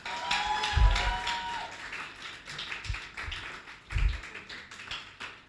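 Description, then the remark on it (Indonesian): A crowd claps for God steadily for several seconds, a dense crackling patter of many hands with a few heavier thumps mixed in and a brief high whistle-like tone near the start. “Come on, tepuk tangan sekali buat Tuhan.”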